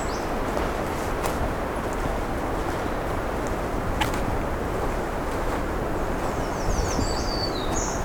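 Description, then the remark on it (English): A black-throated green warbler sings a short run of thin, buzzy high notes near the end, faint beneath steady loud wind noise that rumbles throughout. “Black-throated green.”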